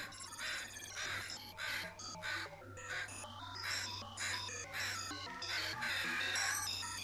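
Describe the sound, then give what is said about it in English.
Several crows caw harshly and repeatedly, their calls overlapping in a dense, continuous chorus over a low steady background hum. No one speaks. “I gave my teeth to the crows, and they have not left me alone.”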